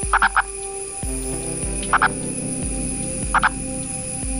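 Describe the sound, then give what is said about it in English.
A male purple frog gives short, clucking double-pulsed mating calls to attract mates during monsoon season, three bursts spaced evenly about every one and a half seconds, heard clearly over a steady low background hum. “During this time, males will attract mates with a call that has been compared to the sound of a chicken clucking.”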